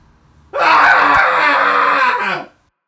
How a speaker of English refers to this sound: And so go ahead and find a place to safely scream along. And we're going to dive right in with a three count. Here we go in 3, 2, 1.